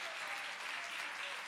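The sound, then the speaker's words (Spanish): A crowd of people clapping steadily together to applaud the Lord, a dense, continuous wash of applause with no pauses, filling the whole short stretch at an even level. “Denle un fuerte aplauso al Señor con todo el corazón.”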